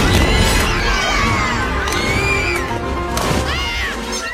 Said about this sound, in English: It's not like that scene in Toy Story 3 where the toys end up in the toddler room and it's total pandemonium.